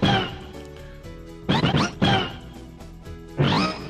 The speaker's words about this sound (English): That's always Mario Kart sounds.